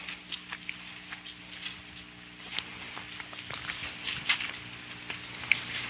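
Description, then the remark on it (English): Many thin Bible pages flip and rustle in an irregular patter of soft crisp swishes and small ticks, fairly quiet, with no one talking over them, as people turn to Romans chapter 5. “I love to hear Bible pages turning.”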